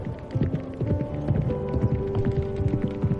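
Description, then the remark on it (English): A horse's hooves gallop in a quick, steady rhythm of thudding beats, continuous, over a low sustained hum. No one speaks. “moving faster and faster, the thunder of hooves and the rushing of wind.”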